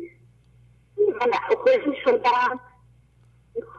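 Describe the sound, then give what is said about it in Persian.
A thin-sounding voice of a caller from Gilan province over a phone line speaks in a short burst, then drops out to a low steady hum before briefly cutting back in. “صداتون قطع وصل میشه.”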